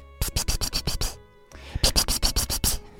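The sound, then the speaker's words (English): Two quick runs of rhythmic, hissy clicking pulses, about six or seven each with a short pause between, like rubbing fingers together while making a 'psst-psst' noise to call a cat. “And then I lift my head, and I rub my fingers together, and I make that little noise you make when you want a cat to come.”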